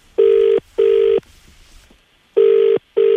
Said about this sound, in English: the phone rings for the first time.